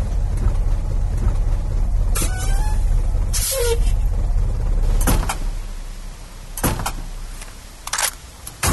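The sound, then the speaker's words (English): A vehicle's engine rumbles steadily, broken by several short, sharp hissing bursts like air brakes as it pulls over, slows and comes to a stop. No one speaks. “There's the truck. Pull over there”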